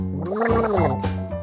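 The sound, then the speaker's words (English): A wet gulping and gurgling as someone sips and swallows water, a steady liquid sound lasting about a second and a half with a brief airy catch near the end. “Just going to stop for a sip of water there, me old darlings.”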